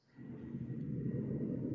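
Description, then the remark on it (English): A steady, low droning rumble of an airplane passing overhead, fading in quickly and then holding an even, muffled roar with no voices. “Oh god, is there a plane?”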